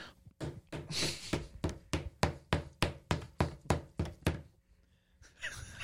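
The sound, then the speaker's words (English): A rubber chicken is slapped against a desk about a dozen times in a quick, steady rhythm, each hit a loud, dull thwack, followed by a brief quiet stretch. “Slapping it on the desk.”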